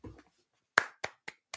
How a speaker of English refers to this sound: I clap myself for that.